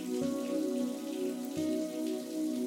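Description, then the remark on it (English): Shower water runs over a body in a steady, even hiss with a soft patter like rain, over a sustained low humming tone. No one speaks. “As the water washes over your body”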